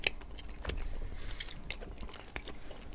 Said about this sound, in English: Chew, chew, chew. There's not quite any other lolly that tastes like a Red Skin or a Red Ripper, I should say. Yeah. It's almost like if you'd been able to condense red cordial into chewable form.